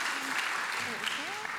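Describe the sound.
A crowd claps steadily throughout, a dense, even wash of applause with a few voices calling out faintly beneath it.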